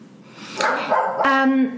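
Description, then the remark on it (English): The speaker's female dog, locked out, gives two quick barks, the second stretched into a higher, whiny yelp, loud and clear. “My dog. Hang on. I've locked her out.”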